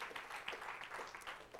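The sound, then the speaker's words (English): A crowd at a worship service applauds the sound and media team, many hands clapping in a dense, sustained patter with no pauses, at a moderate, even loudness throughout. “At the same time, would you give an applause to the sound and media guys that work so hard back there too?”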